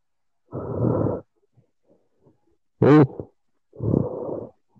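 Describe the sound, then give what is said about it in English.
A man's heavy, raspy breathing that sounds like snoring: two long rough breaths separated by a brief, sharp, pitched snort, fairly loud with quiet pauses between and no talking. “You know, it's not his snoring, it's his heavy ass breathing.”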